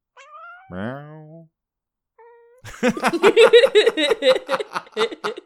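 A couple of short, clear meows from Puka, the second drawn out and falling, followed after a pause by a burst of rhythmic laughter from several people.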